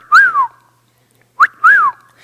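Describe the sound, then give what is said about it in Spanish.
A person whistles a parrot-like call, imitating a talking bird from a house: a rising-then-falling whistled swoop, a pause, then a short upward chirp followed by another swooping whistle. Clear, fairly loud, with no talking. “Y recuerdo este mugre pájaro que vi ahí por la casa. O sea, pasabas y no decía nada, pero decía...”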